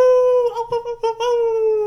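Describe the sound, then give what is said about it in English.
A person imitates a wolf howl: one long, steady, fairly loud howl with a couple of brief wavering breaks in the middle. “Sometimes they luck out and it's something that, it's like, this is WLLF, the Wolf.”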